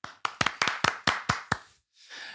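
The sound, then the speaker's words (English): A short burst of applause: about eight crisp, evenly spaced hand claps, fairly loud, that stop abruptly and leave a faint background hiss. “So big round of applause to BioBiz.”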